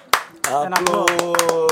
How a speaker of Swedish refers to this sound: Applåd.